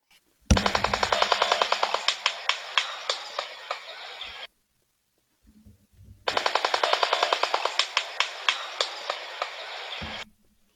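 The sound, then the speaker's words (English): Two long bursts of rapid, loud wooden clattering from a shoebill's bill, like a jackhammer, each a fast train of sharp knocks that slows toward the end, separated by a short pause. “So that was the bill clattering or the jackhammer noise in the beginning, and then some clapping after that.”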